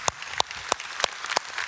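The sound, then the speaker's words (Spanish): Church audience applause at Sugar Creek: a steady crackle of many hands clapping, punctuated by sharp, louder claps landing at an even, brisk rhythm. No voices. “Bueno, qué bueno que todos están tan emocionados, porque no somos un fuerte aplauso por eso.”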